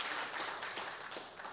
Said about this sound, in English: And if you believe the words coming out of my mouth, I wish you'd put your hands together and praise the Lord.